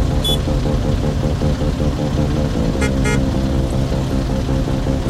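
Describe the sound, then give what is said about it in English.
Layered car horns from people stuck in traffic honk in repeating tonal patterns over a steady, loud traffic rumble, played back through the radio as music in the art project Jam D Jam; the overlapping blasts blend into a droning, musical texture for several seconds. “So essentially, the people in traffic, their frustrations are creating the music that they're listening to.”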